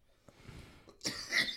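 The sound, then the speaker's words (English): A harsh cough bursts out near the end, loud and raspy, preceded by a few faint breathy sounds and a brief catch in the throat. “See, the temperature on that one's high, makes you cough.”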